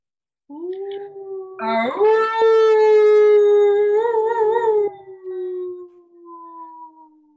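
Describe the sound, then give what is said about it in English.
A person imitates a wolf with one long, loud howl, released on the exhale after a big, deep breath. It rises in pitch, holds steady with a slight waver, then tapers off softly over several seconds. “And then on the exhale, you're just going to release whatever howl feels right for you.”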